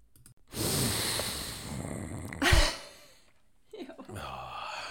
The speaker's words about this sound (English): And oh, we got a sniff. Ready? Yep.